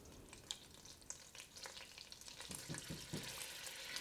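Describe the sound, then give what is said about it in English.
Milk sizzling as it hits hot melted butter: a steady, bright crackling hiss with scattered sharp pops, growing slightly busier and louder toward the end, with no voices. “So it's, you know, it's not spitting, but it's definitely speaking.”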